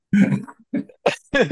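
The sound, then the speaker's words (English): A low, guttural burp after drinking beers that comes up in a few short, rough bursts of voice, with a brief throaty rasp between them and no words spoken. “So sorry, all the beers now burping up.”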